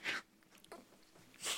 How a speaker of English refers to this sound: Did you just gulp? I'm just... So, oh, he's nervous.